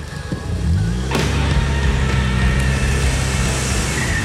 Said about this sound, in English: Rachel throws her car into reverse and backs up so fast her tires churn up the dirt of this turnaround.